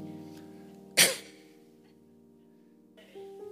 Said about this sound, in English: We sneeze because we're allergic. Pardon me.